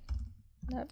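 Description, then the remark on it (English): Quick typing on a computer keyboard to look up what leptospirosis is, two short bursts of clicking separated by a brief pause, with a faint voice-like murmur toward the end. “Typing.”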